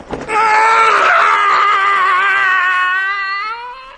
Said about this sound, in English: The regular early morning yell of horror.